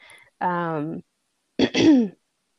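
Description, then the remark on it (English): A distinct throat clearing: a sustained voiced hum, a brief pause, then a sharp rasping burst sliding into a short grunt. No other sounds or speech around it. “I gotta clear my throat because I don't know what I think about either of these.”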